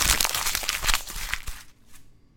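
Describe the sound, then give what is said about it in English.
Loud crinkling and crumpling of a sheet of paper for about a second and a half, dense crackly bursts that stop abruptly as the paper is crumpled and thrown away, followed by a faint light rustle. “Hope you could hear me throwing that piece of paper away, because that game was garbage.”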